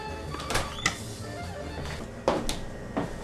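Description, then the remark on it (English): Someone takes an onion out of a refrigerator for chicken soup: a few sharp clunks and knocks of a door or drawer, with rustling and shuffling of items being moved, and no talking. “One last ingredient I forgot that is important for chicken soup is the onion. Let me get it from my refrigerator.”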